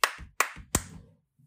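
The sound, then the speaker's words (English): Three sharp, loud hand claps in quick, slightly uneven succession, each with a short ringing tail, heard alone with no talking, as someone demonstrates a double clap. “My double clap is on. Do it right now.”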